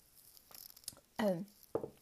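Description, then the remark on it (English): Quiet sounds of someone sipping water from a glass: a few faint clinks and slurps, then a short throaty swallow and a small gulp near the end. “I'm sorry, I'm just going to take a sip of water real quick.”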